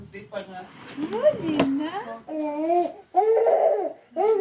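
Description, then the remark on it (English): A 9-month-old baby babbles in a string of high, sing-song vocal bursts with rising and falling pitch, separated by short pauses, with a faint click partway through, while her mother feeds her. “is feeding her baby repanga when we arrive”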